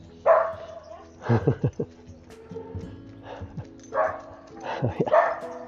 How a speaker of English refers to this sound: Let me see if it's the same one. Hello. Yes, it was you. Very young dog. Yes, I saw you yesterday. Noisy.